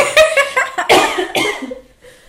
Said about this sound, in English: Hold on, I actually have to cough.